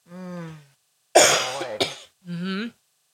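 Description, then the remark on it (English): A person coughs: two harsh, rasping bursts in quick succession, framed by short voiced, throaty groans before and after, with no speech. “So, sorry guys, I'm still coughing.”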